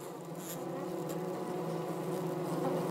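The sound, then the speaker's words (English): A dense, continuous buzzing of a swarm of honeybees fills the air at a steady volume, a layered hum with overlapping wingbeats and no voices. “The day you don't think they're going to swarm, they swarm.”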